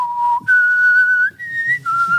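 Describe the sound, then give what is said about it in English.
A single person whistles a short, clear melody, holding long sustained notes that step between pitches with brief breaks, in the style of a spaghetti western tune. “Just because like, I've just been going around the house just whistling.”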